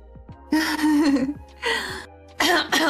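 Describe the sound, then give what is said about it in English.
A person coughs several times, loud, harsh, raspy bursts separated by short pauses, with no talking around them. “Sorry, coughing.”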